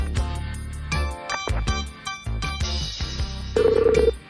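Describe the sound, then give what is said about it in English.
A telephone ringing loudly, a busy melodic ringtone with repeated tonal bursts and a rapid trilling ring near the end. No one speaks. “Ringing, can you hear that?”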